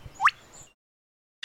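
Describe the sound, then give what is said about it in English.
A mimicked camera motor drive: a quick, rising mechanical whirr, then a short pause of silence before another sharp burst starts. It's fairly loud, with no talking. “A camera with a motor drive.”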